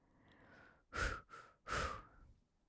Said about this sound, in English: And I'm breathing and it's very chill.